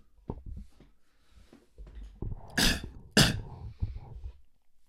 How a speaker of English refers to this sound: I'm coughing again. I ran out of medicine.